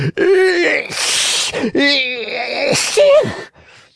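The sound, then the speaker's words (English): A voice acts out two loud, theatrical sneezes of the character Fire Eater in a reading of Pinocchio, each with a drawn-out wavering 'ah' build-up before a sharp, hissing burst. “Two loud sneezes finished his speech.”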